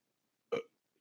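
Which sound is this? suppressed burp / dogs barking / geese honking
suppressed burp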